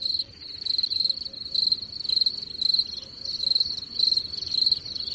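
Crickets chirp steadily in a rapid, pulsing trill, with a high, continuous shimmer and no other sounds or voices, like a quiet night outdoors.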